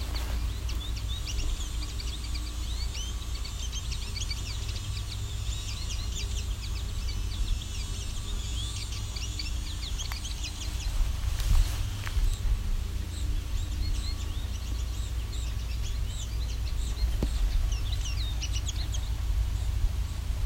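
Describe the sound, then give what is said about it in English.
A male American goldfinch twitters and chirps almost nonstop, a busy stream of bright, rapid calls and song phrases over a steady low outdoor rumble. “Very talkative male American goldfinch.”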